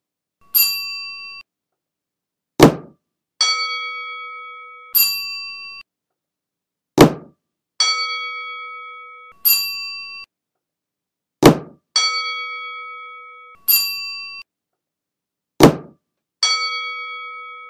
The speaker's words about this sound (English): I'm going to play the two bells, and after each bell, you must drop your hands. I shall do it with you, then you can try on your own.